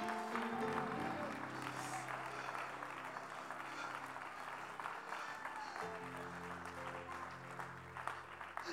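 A church audience claps hands unto the Lord in a steady, dense stream of applause lasting the whole stretch, with a sustained organ or keyboard chord and murmuring voices underneath.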